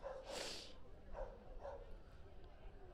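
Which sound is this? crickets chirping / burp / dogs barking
dogs barking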